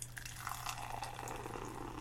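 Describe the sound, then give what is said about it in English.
A steady stream of Kona Longboard Island Lager pours into a glass, a continuous close-up gurgling splash with a fizzy, hissing edge that holds for a couple of seconds. Nobody speaks. “And the pour.”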